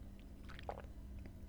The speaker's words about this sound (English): I'm going to have a little sip of persimmon leaf for you because thank you.